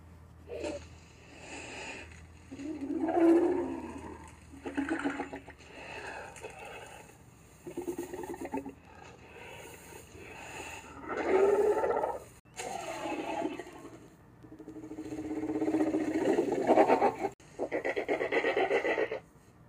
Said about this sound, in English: So to voice the dinosaur for this film, crows and ravens were called in, and marine animals were as well. Well, mainly dolphins, probably for the clicks.